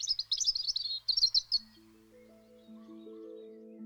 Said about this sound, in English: And for me, it's just everywhere. It's all invasive. You know, I cannot go to a woodland or a park or an urban area without, you know, hearing the birds and being switched on to birds, basically.